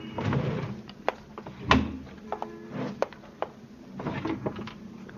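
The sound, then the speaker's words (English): Wooden drawers of a roll-top desk slide and knock shut several times during a search of an upstairs tenement room used as an office, with scraping runs between sharp thumps and a faint rattle of contents. No one speaks. “Same things in the desk drawers,”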